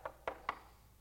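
Three evenly spaced knocks on a door, sharp and hollow, rapping out a quick steady rhythm before fading into quiet. Fairly soft, with no voices present.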